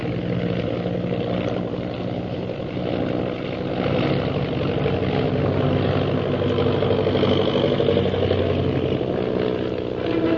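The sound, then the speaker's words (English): A propeller airplane engine drones loudly and steadily throughout as the plane performs stunt maneuvers, a dense roar with slight swells in pitch and intensity. No voices. “I'm going to try to stunt our plane out of the reach of those purple triangle men.”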